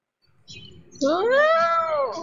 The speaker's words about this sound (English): I would say a cat.